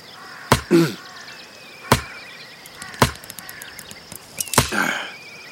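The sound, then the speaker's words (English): A tree branch being chopped with an axe: four sharp, loud woody thwacks at uneven intervals, over a faint background of chirping insects and birds. “How is a tree branch going to help?”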